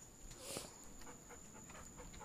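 A dog sniffs and pants in short, breathy bursts, one stronger puff near the start and softer rhythmic huffs after, fairly quiet with no talking.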